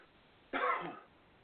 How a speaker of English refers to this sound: Talk for a second. I'm going to cough.